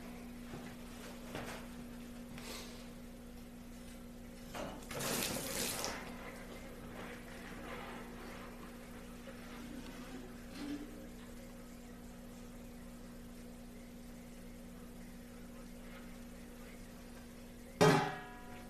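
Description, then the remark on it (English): A tap runs briefly, a short rush of hot-only tap water into a container to finish a batch of homemade laundry soap, over a steady low hum, then quiet room noise and a sharp clunk near the end. “In fact, as hot as your bathtub water is, no cold, just hot, is plenty hot enough to finish this off.”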